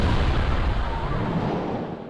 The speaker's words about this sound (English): No more explosions in this explosion show? No. What? A show themed around explosions?